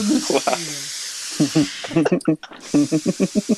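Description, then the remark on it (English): A steady, breathy steam hiss sound effect runs almost the whole way through, briefly cutting out in the middle, while a man talks over it in short bursts. “Grab your towel and your flip-flops because we're entering the steam room.”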